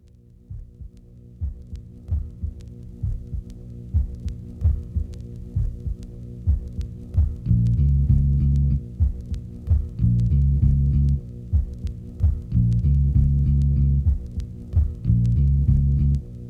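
A slow electronic trip-hop intro built on deep, throbbing bass pulses in a steady rhythm. Around midway a heavy sustained low bass line swells in beneath the beat, with no vocals.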